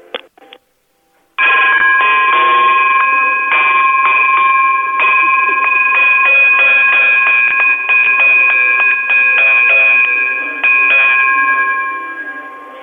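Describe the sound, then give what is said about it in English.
A telephone on a line hooked up to testing equipment rings continuously for about eleven seconds, a loud, steady electronic trill with bright high tones that holds without pause, then fades slightly at the end. A few brief clicks come first. “I need it to ring for at least a minute, like continuously.”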